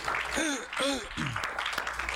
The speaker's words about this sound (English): Clap your hands to the Lord as you're seated.